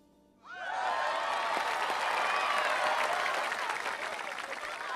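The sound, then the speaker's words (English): A crowd erupts into loud, sustained cheering and excited screaming, with high-pitched shrieks and applause that burst in suddenly after a moment of quiet and stay strong throughout, as the good guys are introduced to them. “What's that sound? Like screaming, but not terrifying.”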